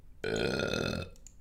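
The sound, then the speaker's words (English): A single long, loud burp rumbles for nearly a second, deep and resonant, then cuts off into quiet room noise. “burp. Here it is.”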